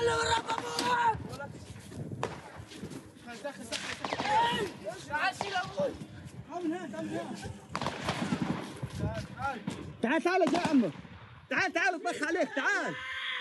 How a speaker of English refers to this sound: Then suddenly, more gunfire.